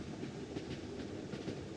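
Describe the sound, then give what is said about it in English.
A train rolls steadily along the tracks, its low rumble broken by a regular clickety-clack of wheels over rail joints, continuous, with no voices. “Then, in 1854, the Frenière station of the Illinois Central Railroad was built.”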